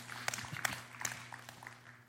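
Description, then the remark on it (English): Faint, scattered applause from a church audience, a few sharper claps standing out over a low, steady hum before it thins away. “You can clap for that, absolutely.”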